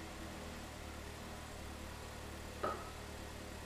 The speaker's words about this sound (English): Is that his car? That's my mom's. Oh. She doesn't sound great right now. It's a nice car. It's probably just wet. The engine or something.